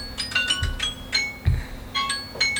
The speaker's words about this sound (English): Oh. Phones are going off.